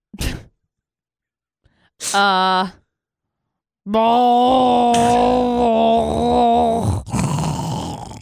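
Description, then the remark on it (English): Someone does a vocal impression of a partner's gurgling snore: a short breathy burst, a brief groan, then a long wobbling, throaty rumble ending in a rough, noisy rasp. Loud, with no words. “It's a mix of a train rolling on ice, coughing, gurgling, mouthwash.”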